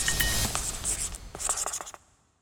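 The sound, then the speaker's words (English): A pen scratches across paper in short, quick strokes with small taps between them, fairly quiet, for about two seconds before fading out, as Putin writes a word on a piece of paper. “This time he wrote a word on the piece of paper.”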